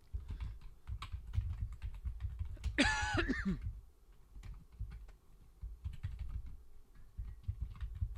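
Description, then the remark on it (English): Rapid, uneven tapping on a computer keyboard, steady for several seconds, briefly interrupted midway by a short throat-clearing sound, as someone searches online on a Canadian Microplay website. “Are you done? Googling with the rad. No. You keep going. I'm searching.”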